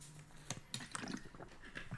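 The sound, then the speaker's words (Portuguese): Someone takes a quiet sip of water: a few soft, wet slurping clicks and a gulp spread over two seconds, faint and with no talking. “Deixa-me só aqui dar um golo de água.”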